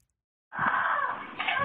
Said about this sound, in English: It's a blood-curdling scream, and it's coming from inside this home. Police respond after a neighbor calls 911 to report a woman crying out for help.